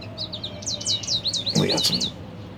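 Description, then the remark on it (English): A rapid series of high, bright bird chirps repeats steadily over a low outdoor background hum, with a brief louder burst of sound partway through. “We got some birds here behind me chirping.”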